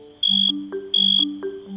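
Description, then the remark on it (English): A male cricket's high, buzzy chirp, made by rubbing the toothed underside of its wings against a scraper on their tops, repeats in short pulsed bursts about every three-quarters of a second, over a low, stepping tonal background that sounds like music. “Male crickets can use their songs to attract a lady cricket or to tell other male crickets to back off.”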